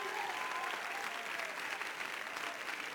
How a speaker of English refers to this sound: Clap your hands and shout to him if you believe what I'm preaching right now.